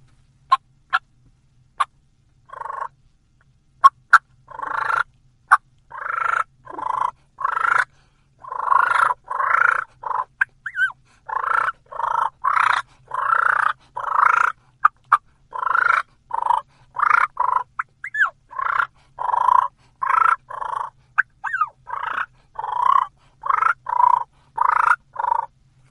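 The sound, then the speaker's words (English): Imitated turkey fighting purrs made with a call: rapid, aggressive, deeper rolling purrs interspersed with sharp clucks and brief high whines, loud, continuing steadily without any talking. “All I'm doing is getting more aggressive with that same purr, a deeper tone, adding some clucks, and putting that little whine in between some of the purrs.”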